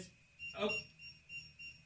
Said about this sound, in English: Right now, it's beeping because it hasn't been activated.